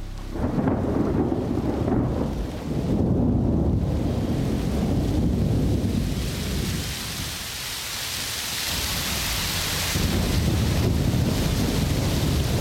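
Heavy rain of the late-spring rainy season in Cuernavaca, Mexico, pours down steadily on the flagstones and roof of a home's patio, a dense roar, with deep rumbles of thunder rolling underneath and swelling in places. No one speaks.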